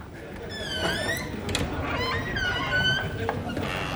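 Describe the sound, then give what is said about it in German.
The door to a men's restroom creaks open with long, high-pitched squeals that rise and fall, two drawn-out squeaks over a steady low background rumble. “Die Tür quietscht.”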